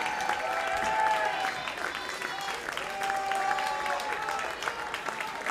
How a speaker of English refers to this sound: Yeah, we should give him some props and a round of applause, if you will.